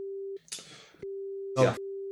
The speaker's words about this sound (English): I'm gonna say something, but I'll beep it out. It'll be funny when I beep it out.